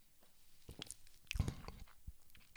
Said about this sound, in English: Let me take another real quick sip of this Chaser beer, Corona.